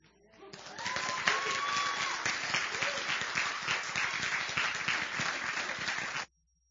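An audience breaks into sustained applause, dense overlapping clapping at a steady loud level for about six seconds, with a few faint voices and whistles mixed in before it cuts off abruptly.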